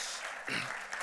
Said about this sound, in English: My wife and I, we've been married 34 years. And yeah, sure, you can applaud. I'll take that applause, sure.